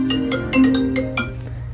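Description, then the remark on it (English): A phone rings while a call is being placed: a quick series of bright electronic tone pulses, about six in under two seconds, over a steady low hum, with no voices. “So we gave him a buzz to see if he had any thoughts on how we could fix it.”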